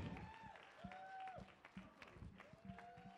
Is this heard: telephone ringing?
no